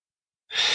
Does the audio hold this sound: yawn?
yes